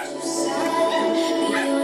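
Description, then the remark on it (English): Several people bark and yelp like dogs, their voices overlapping in a loud, continuous burst of dog-like noise with no pause. “You gotta bark at it with the tree of life sometimes, you know?”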